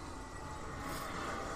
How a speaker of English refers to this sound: But ladies and gentlemen, that was a jet. Yeah, there's been like 12.